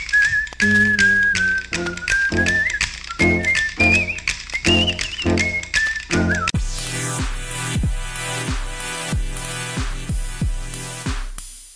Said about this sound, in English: I don't know, but it sounds to me like that whistling man with the bone. Sure having himself a ball.